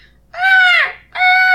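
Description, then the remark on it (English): Two loud seagull cries, the first drawn out and sliding downward at the end, the second steady and cut off, with a short gap between them and no one talking. “A seagull's cry.”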